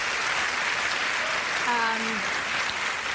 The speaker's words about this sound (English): They're applauding you getting sick.